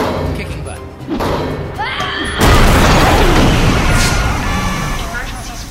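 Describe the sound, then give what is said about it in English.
After a few seconds of quieter shuffling and hissing, a sudden loud explosion set off with an oxygen tank bursts open the locked back door of an operating room leading to an atrium, followed by a sustained roar of rumbling, crackling debris that slowly tapers off. “That's one way to open the door.”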